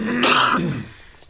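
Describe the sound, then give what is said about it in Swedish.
A single short, raspy cough, fairly loud, on its own with no talking, trailing off into quiet within about a second. “Hosta.”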